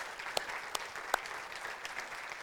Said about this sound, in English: Démosle un aplauso fuerte al Señor. Let's give a loud hand clap to the Lord.